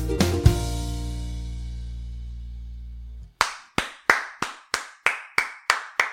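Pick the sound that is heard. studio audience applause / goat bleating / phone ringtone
studio audience applause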